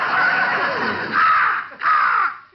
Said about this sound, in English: Hey, what's that? That? Oh, that's Arnold, our talking crow. A talking crow, huh? Let's hear him say something.